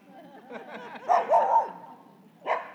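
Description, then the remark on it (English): A dog barks several times: a few soft yips at first, then a cluster of louder barks and one more sharp bark after a short pause. “When I plugged it in electricity, it started barking at me.”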